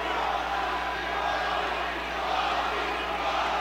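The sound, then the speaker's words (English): A large basketball arena crowd roars steadily during a free throw, a dense wall of many voices chanting, holding at a constant, loud level throughout with no single speaker standing out. “If he misses this one, the crowd chanting Frosty.”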